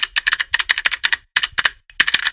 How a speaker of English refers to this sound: And fever, you are feverishly typing away.